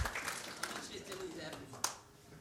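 A brief, quiet round of applause: a thin, scattered patter of clapping from a few hands, with one sharper clap standing out near the end.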